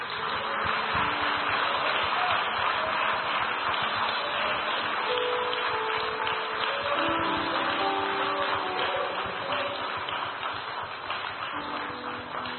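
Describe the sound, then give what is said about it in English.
A church audience claps together in a dense, steady roar of applause that holds at an even loudness throughout, with faint sustained tones running underneath. “That is a clap of success.”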